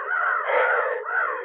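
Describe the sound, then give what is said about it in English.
Ravens caw harshly and loudly, one long raspy call running straight into a second, with no voices, as a cloud of ravens erupts from everywhere. “Finally, I reached the top and I dropped suddenly in the ground as a cloud of giant black scavenger birds erupted from everywhere. Ravens!”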